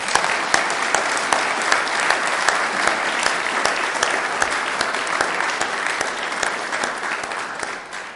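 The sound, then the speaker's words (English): Sustained applause from a large audience in a church at an evening choir performance, for the Opener Choir: a dense, steady wash of many hands clapping at an even loudness throughout, with individual sharp claps standing out, tapering only slightly at the end. “So a big round of applause to the Opener Choir, who sung well as well.”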